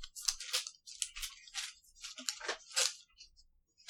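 Sheets of paper being handed out, each person taking one and passing the rest down: a steady run of crisp, crinkly rustles and shuffles, fairly loud, with no voices.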